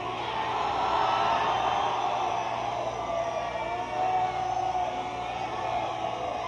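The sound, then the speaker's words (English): A large concert audience screams and yells together on request as a sound check, in one sustained, dense roar of high-pitched voices that holds at a steady loudness from start to finish. “We ask you to scream as if you're in hell.”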